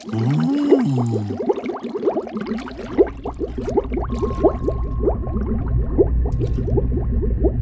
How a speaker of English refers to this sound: I wonder what it sounds like underwater. Ooh, bubbles! Whee! It's like a submarine. A squeezy, wheezy submarine.